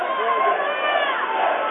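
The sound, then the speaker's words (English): A near-capacity crowd at a volleyball match between Humphrey St. Francis and Red Cloud, in the fifth and final set, roars and cheers in a loud, steady wash of overlapping voices that holds at an even level for the whole stretch. “Near capacity crowd in here.”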